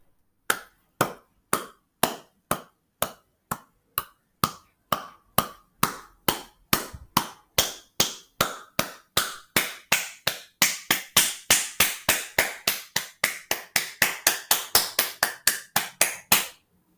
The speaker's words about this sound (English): It's the sound of clapping. Somebody clapping their hands.